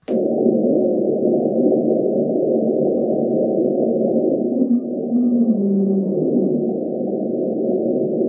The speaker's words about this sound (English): That's the Julia sound. That is an iceberg running aground.